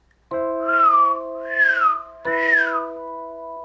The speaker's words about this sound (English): Whistle three times.